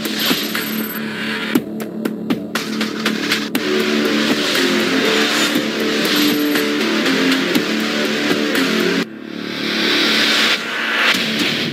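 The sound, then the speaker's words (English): A car engine revs loudly on a street in San Francisco, its droning pitch rising and falling continuously for several seconds, with a few sharp metallic clicks scattered through it and no one talking. “because I'm going to have the opportunity actually to get in this car and hopefully drive it.”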